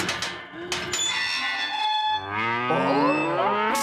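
A cow lets out a long, loud moo, its drawn-out bellow dropping lower and wavering toward the end, with no talking over it.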